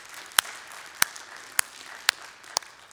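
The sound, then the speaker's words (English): An audience in a church applauding to celebrate seven baptisms, with a few sharp, evenly spaced claps standing out over a faint, steady wash of clapping, and no voices. “And yeah, you could clap that up.”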